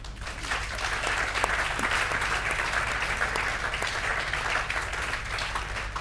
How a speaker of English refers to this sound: I hope you're very much enjoying my habit of saying thank you before you clap.